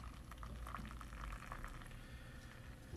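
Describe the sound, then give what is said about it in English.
Steady fizzing and bubbling of beer freshly poured from a just-opened bottle, settling in a glass, a continuous crackle of popping bubbles with faint liquid sloshing, no voices. “It kind of looks like Guinness when you pour a Guinness and the Guinness is like settling.”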